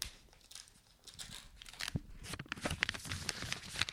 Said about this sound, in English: It's a beautiful, like, Tiffany green envelope. I'm going to open it. It's sealed.